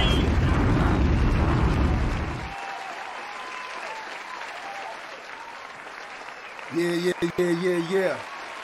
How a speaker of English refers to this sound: Yeah. I like to come in with the hand claps because I feel that it's appropriate.